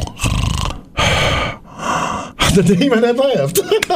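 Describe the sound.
A voice imitates snoring with three loud, rasping breaths in a steady rhythm, then breaks into animated talking.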